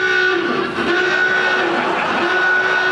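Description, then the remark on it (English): A loud, steady alarm on the quiz show Number Wang blares without pause, a sustained two-tone drone like a horn held for several seconds, signalling three days without anyone getting Number Wang. No talking over it. “That alarm means it's been 3 whole days without anyone getting Number Wang, which means we have a sudden death tie break.”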